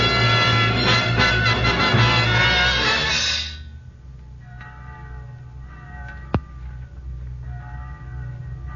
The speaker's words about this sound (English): Church bell? Oh, yes, yes, of course. Church bells are on God's side.